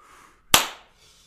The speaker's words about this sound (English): And you did just slap me fairly hard.